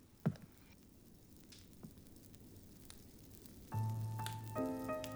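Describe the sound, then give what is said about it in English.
A fireplace fire crackles softly, with scattered sharp pops over a low, steady rumble; partway through, a sustained tonal drone of music swells in beneath the crackling. “He doesn't even see someone sitting at a chair staring in the fire.”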